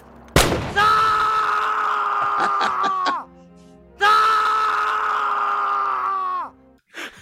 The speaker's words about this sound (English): I do love how he had one screaming man sound effect, and he used it repeatedly.